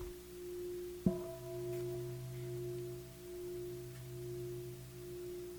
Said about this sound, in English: Normally you say, what do you hear? Oh, I hear the sound of a bell, as if it's one thing. Is that one thing?